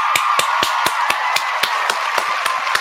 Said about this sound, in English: Let me go ahead and get the round of applause together for Premier Cocktails.